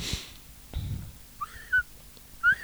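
Whistling cuts in after a soft thump: two people whistle a tune at the same time in a false start, two short, bright phrases, each sliding up and down, moderately loud, with no talking.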